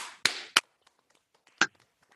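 Three sharp, loud hand claps given as a "big clap" for Carrie Nation: two in quick succession, then a short pause before a final one, with a soft hiss at the start and no voices.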